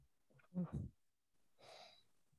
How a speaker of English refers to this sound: Yeah, sorry, I was yawning.